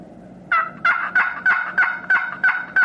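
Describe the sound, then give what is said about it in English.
A series of eight sharp, evenly spaced wild turkey yelps made on a friction box call, loud, each a raspy two-toned note repeated in a steady rhythm with no talking. “And that's a yelp.”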